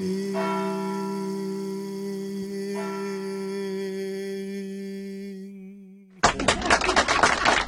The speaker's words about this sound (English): Do you hear the bells ringing? Do you hear the bells ringing?